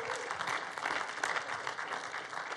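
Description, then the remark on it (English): A church audience claps to welcome and honor visitors at a morning service, a dense, steady wash of many hands applauding at an even loudness throughout, with no voices standing out above it. “We'd like to welcome you to church this morning, and we do that around here just by clapping for you to honor you.”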